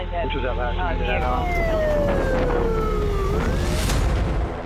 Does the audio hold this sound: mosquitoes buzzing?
no